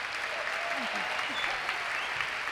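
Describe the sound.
Steady, dense applause from a live audience at a taping of Writers Radio Theater at the Oldenburg Entertainment Complex in Fort Mitchell, Kentucky, fills the whole stretch, a continuous crackle of many hands clapping at an even volume, with a few faint voices rising underneath.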